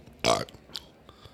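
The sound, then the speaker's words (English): A loud burp, short and throaty, bursts out once and ends abruptly, followed by quiet room noise and a few faint, brief sounds. “That should count as 2 burps.”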